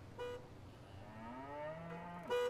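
A cow in Delhi traffic lets out one long, drawn-out moo that slowly rises and falls, bracketed by short, bright horn blasts at the start and end over a steady low background rumble.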